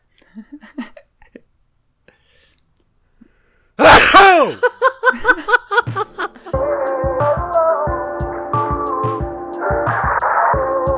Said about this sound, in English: I have to sneeze.